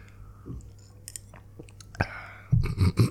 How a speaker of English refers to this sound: Let me take a sip.